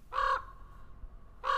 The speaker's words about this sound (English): He sent out a raven.